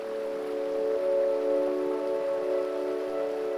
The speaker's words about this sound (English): The sound of the river soothes your mind. And watching the river brings you deeper and deeper into relaxation.